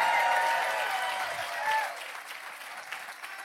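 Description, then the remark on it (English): An audience claps together in a dense, steady wash of applause that stays loud at first, then thins and fades gradually over a few seconds, with some scattered cheering mixed in. “Come on, if you're going to clap, give a good hand clap today.”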